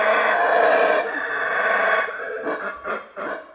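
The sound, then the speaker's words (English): A howler monkey roars loudly, a rough, sustained, throaty drone that breaks after two seconds into a series of rhythmic, pulsing bursts. No one speaks. “They roar to warn other monkeys to stay away from their trees.”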